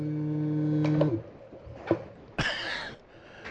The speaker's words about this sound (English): Somebody brought a cow to the game.